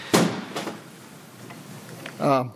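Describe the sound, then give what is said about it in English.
A heavy door slams shut with a sharp, booming thud as someone storms out of a hearing room, followed by a softer knock and some rumble, then a brief voice speaks near the end. “Brophy grabs his computer and his stuff. He slams out of the hearing room.”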